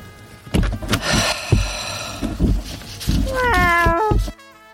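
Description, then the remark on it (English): A cat lets out a loud, drawn-out meow, its pitch wavering and sliding down. Several thumps and rustling noises come before it. “Okay, let's try this once again without the cat scaring the heck out of me.”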